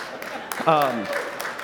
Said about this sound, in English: You should not clap for that.